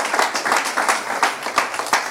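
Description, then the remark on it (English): An audience claps steadily, a dense, crackling patter of many hands with a few sharper slaps poking through, moderately loud, with no one talking over it. “Come on, y'all don't want to clap right now.”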